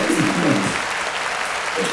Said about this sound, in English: So let's see if I hit the applause.